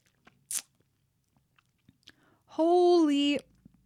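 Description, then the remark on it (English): A quick slurp of a tart, fruity alcoholic drink amid small mouth clicks, followed by a loud, sustained voiced 'mmm' of satisfaction lasting about a second. “I need a sip after that long-winded promotion.”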